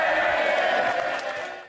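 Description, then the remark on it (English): A few scattered claps in the House of Commons chamber after a speech ends, mixed into a steady, loud wash of murmur and voices that holds for a moment and then cuts off. “And then a few claps.”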